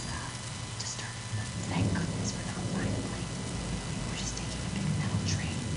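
Rain pours steadily while deep thunder rumbles and rolls underneath, a continuous storm wash with occasional brighter splashes and crackles throughout.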